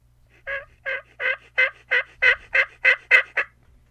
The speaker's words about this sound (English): It is that time of the year where we go out and get these magnificent gobblers. Thunder chickens.